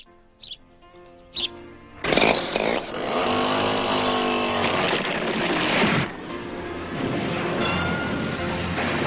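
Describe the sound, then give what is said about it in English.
Two short pulls, then a chainsaw roars to life and revs loudly and steadily in the theme music of the TV program Lou Grant, its buzzing engine blending into the music that continues underneath, with a brief dip before it surges again. “The chainsaw, but then and then the sax.”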